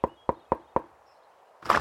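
Four firm, evenly spaced knocks on a neighbour's front door, clear, followed by a short pause and then a brief burst of louder noise at the end.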